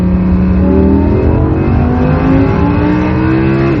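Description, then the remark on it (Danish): An Audi R8 engine in first gear revs high, up to 8,500 rpm, inside a small tunnel, roaring continuously for several seconds, its rising and falling harmonic whine loud and reverberant, with no talking. “Den tager altså 8.500 opvejninger, den her motor. Og en lille tunnel.”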